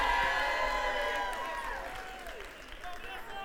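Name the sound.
crowd cheering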